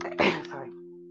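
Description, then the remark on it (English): A single sharp sneeze bursts out near the start, loud, then fades into a quiet, steady background hum. “Bless you.”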